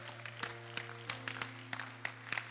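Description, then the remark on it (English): Scattered, uneven claps from an audience, a dozen or so sharp hits with no steady rhythm, fairly quiet over a constant low electrical hum. Nobody speaks. “I didn't say you should clap, but you as want to clap.”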